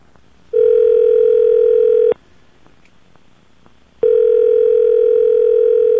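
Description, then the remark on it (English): A telephone ringing tone of an international call to Canada, dialed from a paid phone in the desert: two long, steady, mid-pitched buzzing rings, each about a second and a half, separated by a two-second pause. The tone is loud and there is no talking. “I pay her the money and dial.”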